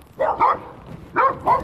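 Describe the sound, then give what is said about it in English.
Four sharp barks from two dogs in two quick pairs, loud, with a brief pause between the pairs and no talking. “There's two dogs.”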